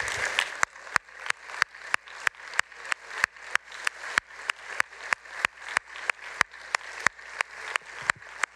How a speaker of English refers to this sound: And so we applaud you this morning, moms.